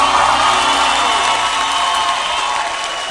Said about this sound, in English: Hallelujah. Can you give a louder hand clap unto Jesus?